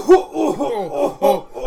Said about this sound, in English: He coughed into his elbow, ladies and gentlemen. It's important.